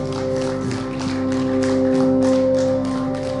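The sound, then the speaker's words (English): An audience at a church service applauds the Lord steadily for several seconds, a dense wash of clapping over sustained, held chords from an organ or keyboard. No one speaks. “Give the Lord a clap off. Dale al Señor un fuerte aplauso.”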